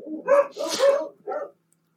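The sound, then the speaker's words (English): Dogs bark in three quick bursts, the first two running together and the last shorter, loud with no talking over them. “That's even worse. And the dogs.”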